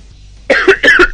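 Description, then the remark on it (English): Two loud, harsh coughs in quick succession, each a rough burst lasting about a quarter second, with no talking around them. “going to be a severe cough.”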